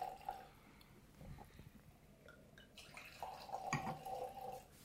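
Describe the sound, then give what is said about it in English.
White wine is poured into a glass, a quiet trickling stream with a faint ringing tone building over the last second and a half, preceded by soft drips and small clinks. “So I'll pour a little bit for you first.”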